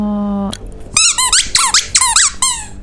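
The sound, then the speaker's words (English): A game show buzzer gives a short, flat, low buzz lasting about half a second, then a quick run of high, rising squeaky chirps follows. “I think he just buzzed in. I think that was a buzz.”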